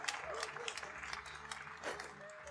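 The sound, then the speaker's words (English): An audience at an event applauds steadily for Treefort Music Fest and Duck Club, with dense overlapping claps and a few faint whoops or whistles mixed in. “Clap for Treefort and Duck Club.”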